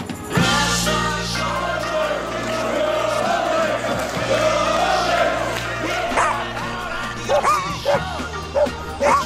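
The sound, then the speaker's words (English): A loud, busy opening theme tune of the radio show Dog Talk on News Talk 610 CKTB, with sustained instrumental tones, overlaid with repeated dog barks and yips that pop out more sharply toward the end. “What a killer, what a killer opening tune.”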